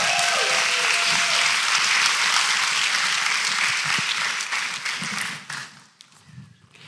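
An audience claps steadily in a dense, crackling wash of applause that holds for about five seconds, then thins out and fades to a few scattered claps.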